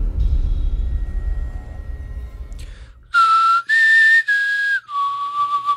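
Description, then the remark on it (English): A person whistles a short four-note tune meant as the Hunger Games whistle, a quick rising then falling signal call, clear and fairly loud after a stretch of low background rumble. No one speaks. “That was supposed to be the Hunger Games whistle.”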